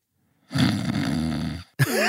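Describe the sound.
A voice imitates a drunken whiskey snore: one long, rumbling, low-pitched breath of about a second, followed by a brief pause and the start of another throaty snort.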